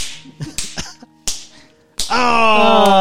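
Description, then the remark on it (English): Several sharp slaps crack out at uneven intervals as two people slap each other, then a final hard smack gives way to a loud, sustained ringing tone that fills the rest. “Okay, and now slap each other until someone goes unconscious.”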